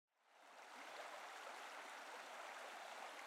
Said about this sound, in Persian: پیاده که میشیم صدای رودخونه میاد.